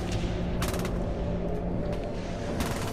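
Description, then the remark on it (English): Short bursts of rapid, stuttering gunfire from the last functioning deck guns of a badly damaged warship crack out over a constant heavy rumble, with a few scattered single shots between the volleys. “The spastic cough of her last functioning deck guns can still be heard.”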